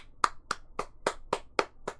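Seven small, quiet hand claps in a steady, even rhythm, each a soft light pat with nothing else around them and no talking.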